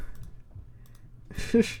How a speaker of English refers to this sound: Sorry if you guys can hear my keyboard.